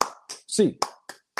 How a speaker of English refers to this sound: And as always, UCLA fans, hands up, eight clap time, baby. And one, two, three, four, five, six, seven, eight.